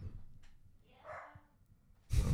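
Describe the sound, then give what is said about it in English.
The speaker's dog barks somewhere upstairs, muffled, with a brief bark or two followed by a louder burst of noise at the end. “I don't know what is going on with my dog upstairs.”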